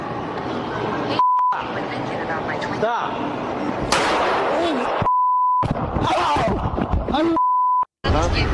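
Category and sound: impact, gunshot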